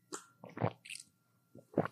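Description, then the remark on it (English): Wet mouth sounds of someone sipping water: a few short, soft slurps and swallows in quick succession, then a brief pause before one more sip, with no talking. “You like delicately sip your water.”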